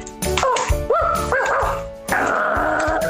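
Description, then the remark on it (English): A small dog gives a few short, high-pitched yips and barks in quick succession, clear, followed by a longer whiny bark at the end. “For our auditory listeners, make the dog bark so they know it exists.”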